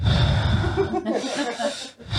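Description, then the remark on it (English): Heavy breathing blasts right into a microphone, loud and breathy, with rough snorting, wheezy pushes of air running through the whole stretch. “Heavy breathe the whole time.”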